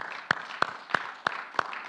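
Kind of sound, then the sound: crowd, audience clapping hands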